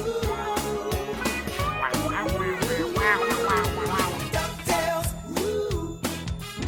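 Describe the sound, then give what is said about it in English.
An electric guitar solo in the extended version of a song, over a full band with steady drums, its bent, nasal notes squawking in short bursts that sound much like a duck quacking. “It sounds like a duck.”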